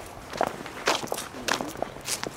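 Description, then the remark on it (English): Footsteps descend a set of stairs in a Boston-area cemetery where Charles Sumner is buried, on the way to his gravesite; four or five firm scuffing steps at a steady, unhurried pace, with no voices over them. “Yeah, we'll go down these stairs and get cut through.”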